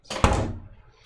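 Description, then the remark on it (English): A fridge door swings shut with one soft, dull thump, followed by a brief rattling decay that fades away within a second. No voices. “He didn't close the fridge all the way.”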